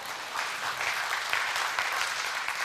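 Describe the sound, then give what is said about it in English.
An audience applauds steadily for a returned Honduras team of people from Rockbridge, Chatsworth, shown in a picture: a dense wash of many hands clapping at an even, moderate loudness throughout, with no voices standing out. “Yeah, that's a good place to clap.”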